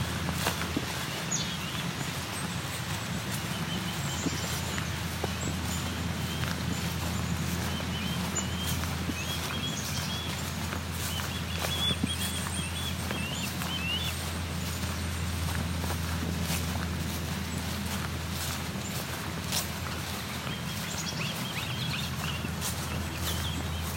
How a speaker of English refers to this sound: Goldfinch and Northern Flicker. Northern Flicker was making the wicka wicka call.